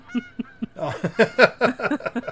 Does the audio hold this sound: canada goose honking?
yes